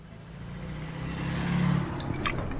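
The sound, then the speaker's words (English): A car engine idles, then revs up as if pulling away, its low drone swelling in pitch and loudness before a few light rattles near the end. No one speaks. “Get the car ready.”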